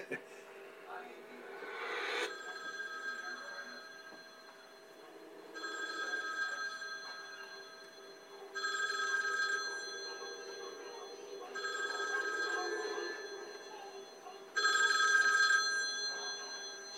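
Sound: telephone bell ringing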